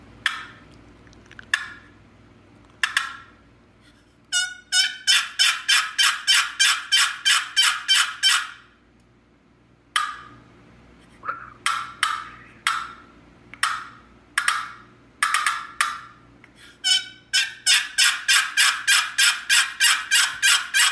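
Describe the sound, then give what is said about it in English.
A turkey assembly yelp, a call hens use to gather their young, played on an award-winning wooden box call that rubs two pieces of wood together: long runs of raspy, evenly spaced loud yelps, broken by a few short pauses and single sharp strokes. “showed us some of his award-winning turkey calls. This one's called an assembly yelp.”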